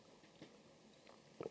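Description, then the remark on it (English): Soft mouth sounds of someone sipping a cosmopolitan cocktail, a few faint slurps ending in a slightly louder sip, with no talking over a quiet background. “While I have a sip of my own PED here, which is a lovely cosmopolitan that my wife made me, and it's very nice.”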